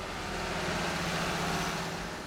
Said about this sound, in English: As we arrive on a beautiful autumn day, a huge tractor goes back and forth under this futuristic structure.